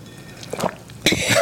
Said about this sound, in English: Okay. That was a little too far. It's like a really nice gulp in there.